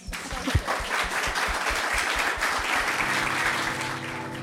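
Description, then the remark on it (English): A crowd claps steadily for several seconds, a dense crackle of many hands at an even, fairly loud level, with a low hum and tonal music entering near the end. The applause is at a panel discussion held at the UTS Business School. “Can we just have a round of applause for that?”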